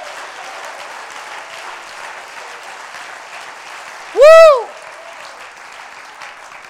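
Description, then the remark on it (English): Steady, dense applause from a large church audience runs throughout, with one loud, high rising-and-falling 'woo' cheer bursting out partway through before the clapping carries on. “Oh, clap your hands and magnify the Lord.”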